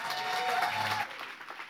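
An audience claps together in a steady, dense burst, with a faint sustained tone and low hum underneath for the first second before the clapping thins out and fades.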